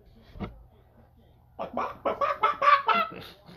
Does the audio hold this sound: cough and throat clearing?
no